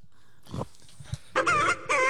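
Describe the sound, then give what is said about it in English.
A chicken clucks, two loud, drawn-out squawking calls after a few softer, scattered noises, with no one talking. “Oh, we have a chicken.”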